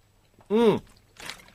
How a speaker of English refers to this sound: Sorry, I'm having a swig of water.